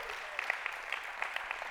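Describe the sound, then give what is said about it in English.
An audience claps for the Lord in steady applause, a dense wash of overlapping hand claps with a few sharper individual claps popping out above it at a moderate level. “Come on, give the Lord a hand clap of prayer.”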